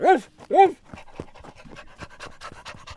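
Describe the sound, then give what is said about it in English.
An older dog pants in two loud, voiced huffs right at the start, then quieter talking and rustling carries on underneath. “this is Sparky. He is a very special dog.”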